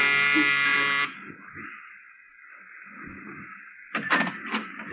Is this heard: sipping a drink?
no